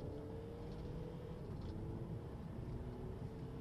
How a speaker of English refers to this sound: Now remember, that's a diesel engine. That's a 2-litre four-cylinder diesel engine, and it actually sounds quite sporty. The noise is not too intrusive inside,